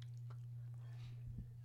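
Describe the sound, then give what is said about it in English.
Quiet chewing of pretzels with mustard, with a few soft crunches and mouth clicks spread across the moment over a steady low hum. “A little mukbang for you. Just me chewing.”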